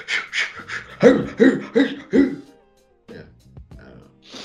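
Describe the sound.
A person imitates a drug dog panting and sniffing as it searches people: a quick, rhythmic run of about seven breathy, voiced huffs, then a few softer, scattered breaths and sniffs.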